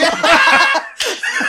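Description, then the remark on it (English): A sharp, cracking whip-crack sound effect bursts in near the end, with a second quick crack right after, following a stretch of loud, bright laughter-like noise. “Cut it, whip crack, explosion.”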